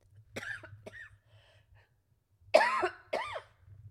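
A person with a lingering cough, which has lasted since the babies have had coughs, coughs several times in two bursts: a pair of softer coughs, a pause, then two louder, harsher coughs. No talking, just a low hum underneath.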